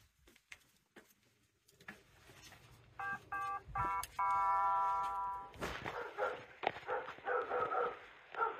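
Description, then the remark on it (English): A doorbell chimes, then a big dog barks repeatedly and loudly, a rapid string of excited barks that continues to the end. “It's his dog.”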